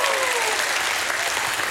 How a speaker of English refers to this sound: Somebody in the house give God a hand clap and a shout of praise.